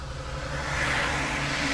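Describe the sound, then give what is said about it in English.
A big truck rolls past with a deep engine rumble and broad road roar, swelling slightly louder as it nears, with no voices over it. “Yeah, it's a big ass truck passing by.”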